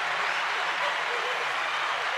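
A stock applause sound effect played on tap by a broadcaster: a steady wash of crowd applause, many hands clapping at once in a dense, even patter with no pauses, moderately loud and sustained throughout.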